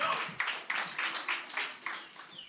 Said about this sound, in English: Should we give him another little clap? Yeah.